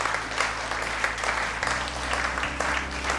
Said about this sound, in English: Oh, somebody give the Lord a clap in the house this morning.